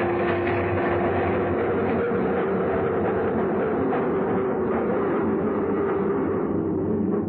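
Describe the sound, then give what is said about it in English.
A subway train rumbles steadily along the rails, a loud, continuous roar with faint rhythmic clatter, heard from inside the car with no voices, before stopping at the 59th Street station. “We got off the train, and he hurried across the dark, deserted platform.”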